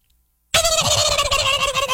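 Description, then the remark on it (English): After a brief silence, a loud imitation turkey gobble bursts in, a rapid warbling, rattling call that holds steady for about a second and a half. “This is a turkey.”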